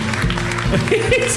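audience clapping

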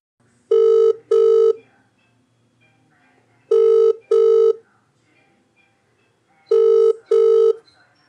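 telephone ringing

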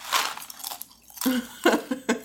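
crunching

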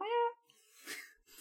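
cat meowing

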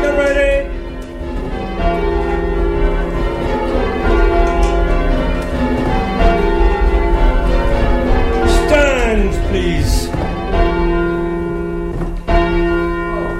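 church bells being rung

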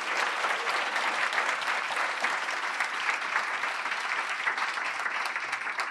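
round of applause

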